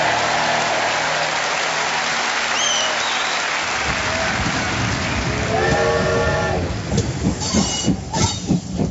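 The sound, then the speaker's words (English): A steam train rumbles along the railway, a steady mechanical roar that swells, with high whistling tones midway and rhythmic chuffing bursts building toward the end, fairly loud. “Ah, the golden age of the steam railway.”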